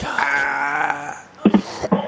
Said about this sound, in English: Oh, he even had it. A rim shot.